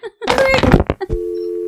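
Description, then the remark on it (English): A wavering, moaning voice gives way to a short, sharp click of a phone hanging up, followed by a steady, loud dial tone humming on to the end. “This phone call's over. You're going to hear click.”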